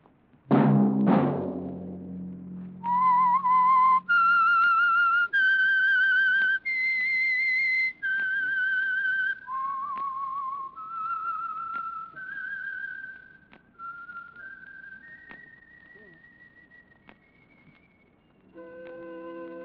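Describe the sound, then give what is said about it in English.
A loud low musical sting opens, then a lone whistler carries a slow signature theme tune of long, sustained notes stepping up and down, clear, fading to a low orchestral note at the end. “Let that whistle be your signal for the Signal Oil program, The Whistler, each Wednesday night at this same time.”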